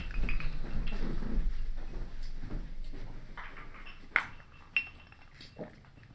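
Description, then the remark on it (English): Two sharp, bright glass clinks ring out about half a second apart as a dump glass is fetched during a bourbon tasting, following a stretch of soft shuffling and handling noise, with no one speaking. “So while everybody decides how they like that, I'm gonna get a dump glass.”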